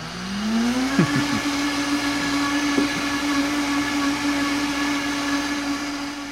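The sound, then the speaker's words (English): A Vitamix Professional Series 300 high-powered blender runs loudly and steadily, its motor tone rising as it spins up, with a few brief knocking thumps early on as contents churn, then a sustained whine. “The Vitamix Professional Series 300 blender is my baseline pick this week. A fabulous, fabulous machine.”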